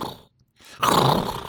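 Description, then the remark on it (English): A voice imitates a horse: a short breathy snort, a brief pause, then a loud, strained, wavering whinny that holds to the end. “So that sounds like a horse or a woman who is very good at being a horse.”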